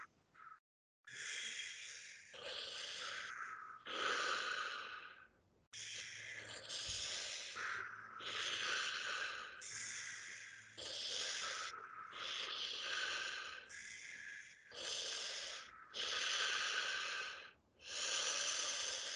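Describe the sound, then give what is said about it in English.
An instructor demonstrates paced breathing for a group to follow: steady, forceful breaths repeat in a quick, even rhythm, each inhale and exhale a loud airy rush, continuous for the whole stretch with only brief pauses. “Start breathing at my rhythm.”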